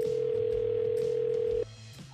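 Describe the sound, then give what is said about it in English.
A single ringback tone from an outgoing phone call: a steady, clear electronic hum lasting about a second and a half, then cutting off abruptly, over a soft low background bed. “Let's get her mom, Liz, on the phone.”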